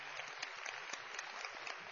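A crowd claps steadily for a couple of seconds, a dense, fairly quiet patter of many hands with no voices, heard from a slight distance.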